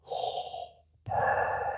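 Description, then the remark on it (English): Someone imitates heavy mask respirator breathing: a loud, rasping, hollow breath in, a brief pause, then a long resonant breath out, with no talking. “so the line from Star Wars is, …, do the breathing”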